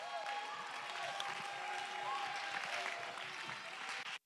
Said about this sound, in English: Somebody clap your hands and shout with a voice of triumph.